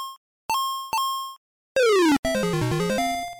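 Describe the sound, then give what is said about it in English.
Retro video game sound effects: a few short electronic blips, then a buzzy tone sweeping quickly downward and a stepped, descending chiptune jingle, loud with no voices. “V is for video game.”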